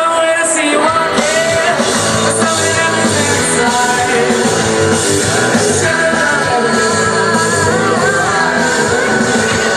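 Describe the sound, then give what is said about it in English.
A loud crowd cheers and yells without pause for about ten seconds at an indie rock show, cheering a band's performance, shouting voices rising and falling in a dense, steady roar. “And the crowd sure liked it too.”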